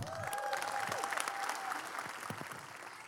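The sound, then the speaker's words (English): Sustained applause from a large crowd clapping along with the Watoto Children's Choir fills the space, dense overlapping claps at steady loudness with a few faint cheers or voices rising above, continuing throughout without pause. “You got to clap with these guys because they're so energetic, and everyone at home, you need to stand too, and you need to clap.”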